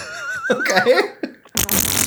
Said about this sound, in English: That's a fart. Fart alts? Is that what it was? A string of 12 different farts, and then they did the click.